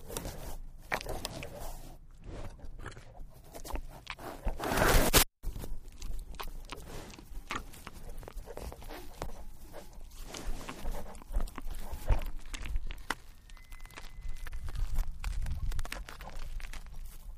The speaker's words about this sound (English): I heard a sample on your website of an elk munching on a microphone.